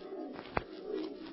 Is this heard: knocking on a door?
no